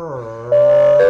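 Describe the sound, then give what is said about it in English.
Footballer Joel Selwood hums a steady, buzzing drone in imitation of an airplane engine. The sustained tone holds one pitch and swells abruptly louder halfway through the short clip. “That is Joel Selwood impersonating a plane.”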